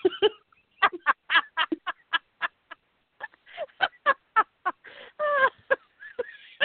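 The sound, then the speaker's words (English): A human voice lets out a rapid, uneven string of honking, turkey-like squawks from a rush of air out of the mouth, fairly loud, with a few longer strained cries toward the end and no words spoken. “You get this rush of air coming out of your mouth.”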